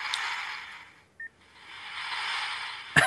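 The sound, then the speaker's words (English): A battery-powered 1980s Rom action figure's electronic respirator breathing: two long, steady hissing breaths separated by a brief electronic beep, ending with a sharp click. No voices. “There's his respirator. Nice. As you can hear, it's not... There he is. There he's breathing.”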